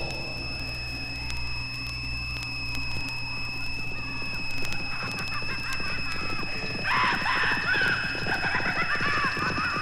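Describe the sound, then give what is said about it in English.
A white stallion gallops across the countryside with a quick, steady rhythm of hoofbeats over a sustained eerie electronic hum, growing louder and busier toward the end, where a whinny-like squeal rises. “A ghostly white stallion galloped across the countryside carrying a ghostly rider.”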